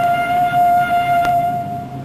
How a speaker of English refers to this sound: Faintly from a distance, there comes the sound of a departing train.